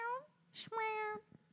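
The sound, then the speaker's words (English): A person's voice mimics a cat's meow, two drawn-out, nasal tonal calls separated by a short breathy burst, fairly loud, with no other talking. “Do you guys make weird noises at your animals now that we're meowing?”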